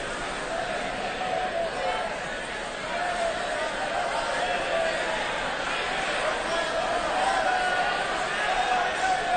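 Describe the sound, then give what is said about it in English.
An audience, including teens, shouts praises together like the crowd greeting Jesus riding on a donkey: a loud, continuous wall of many overlapping voices that holds steady for several seconds without any single clear speaker. “And as we shout those things, and you kind of place yourself in the crowd, and you hear what the crowd was hearing that day, try to imagine Jesus riding along on this donkey, okay?”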